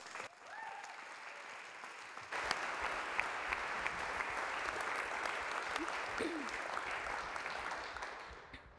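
A crowd applauds with a steady, dense patter of clapping that swells after a couple of seconds and holds strong throughout, with a few faint voices and whoops mixed in.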